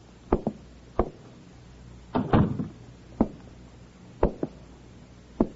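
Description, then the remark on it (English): Several sharp wooden knocks and thumps at irregular intervals on the door of apartment number 7, on the third floor of a building in a West Coast city, in the late afternoon. A man knocks, gets no answer, then tries the door and finds it open: a short cluster of rattling, clunking handle and latch sounds in the middle. No one speaks. “Receiving no answer, he tries the door, finds it open, and enters.”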